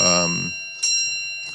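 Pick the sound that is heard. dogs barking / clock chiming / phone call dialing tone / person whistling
clock chiming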